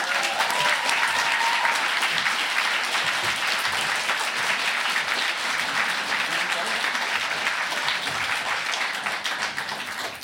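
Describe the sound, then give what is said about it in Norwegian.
Sustained, loud applause from a sizable audience at a book talk, welcoming two authors and moderator journalist and critic Bjørn Ivar Fiksen, dense crackling claps filling the whole stretch and tapering only slightly near the end. “Gi dem alle tre en varm applaus.”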